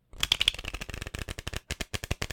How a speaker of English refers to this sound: So that was a standard shuffle. It was a riffle shuffle.